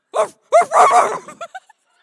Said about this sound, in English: Like there's a little dog in that house. I don't know. I feel like I could take it.